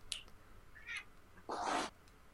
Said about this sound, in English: Sorry, cat attack. Yeah, I was going to say, that cat sounded angry. It's like a loath cat. Sorry.